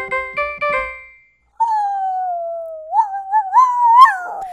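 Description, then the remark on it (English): A person imitates a dog: a few quick yipping cries, a short pause, then one long, loud howl that holds steady before wavering and rising near the end. “I'm a doggy. That sounds really real.”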